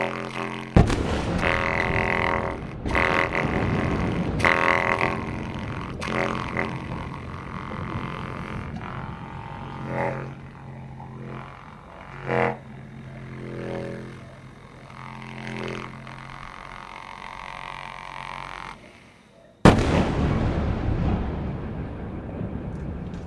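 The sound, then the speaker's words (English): Several heavy blasts from the bombing of a city jolt a thick, droning wall of layered sound, and near the end a loud, sudden boom opens a rough, roaring rumble that fades away. “I heard this this explosion and then this huge wave of almost like the city answering, the city waking up and giving its commentary on the bombing.”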